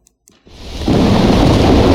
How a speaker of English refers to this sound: Suddenly, out of nowhere, a furious storm comes upon the lake. Waves start sweeping upon the boat. The wind howls around you, the sky goes dark. The storm, it's getting worse, and the boat starts to roll around.